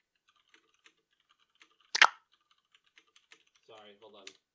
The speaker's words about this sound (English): I thought you were going to keep talking. I was typing in Discord.